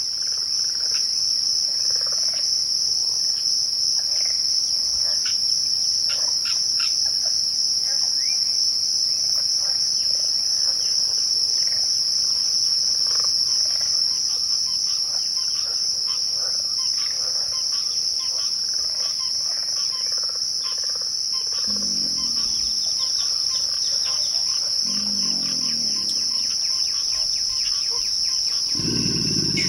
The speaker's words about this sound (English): We leave you this week deep in a southern swamp. Birds, pig frogs, and the deep growl of an alligator greet the visitor out for a stroll through the morning mist. These digital recordings were assembled for the CD ….